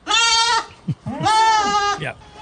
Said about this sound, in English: that the goats could be played anytime you mention North Carolina.